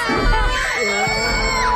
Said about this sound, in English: I can't get the screaming.